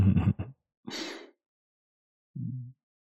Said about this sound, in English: And he was making like these gasps, and every now and then he'd scrunch his face and he'd let out a little whine.